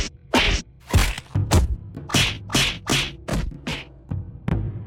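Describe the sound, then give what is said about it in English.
A video game character punches a tree for wood: about ten sharp thwacks land in a quick, slightly uneven rhythm, each a crisp wooden whack with a short swishy tail, and no one talks. “I guess I'm punching some trees.”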